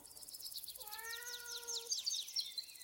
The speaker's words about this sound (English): she heard a soft mew from up ahead. She froze, listening.